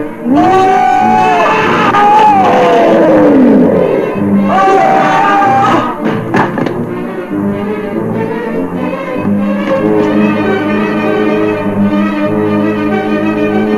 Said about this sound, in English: The time is up. Bring out the lions.